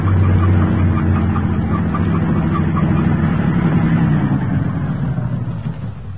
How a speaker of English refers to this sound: The truck has no headlights on, but it's going to pass right by us.